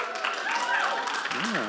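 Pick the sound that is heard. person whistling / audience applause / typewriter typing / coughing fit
audience applause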